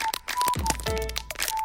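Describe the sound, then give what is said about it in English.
Paper crinkles in a quick series of sharp, dry crackles, steady and fairly loud, with a low hum running underneath. “Yeah, keep doing that with the paper.”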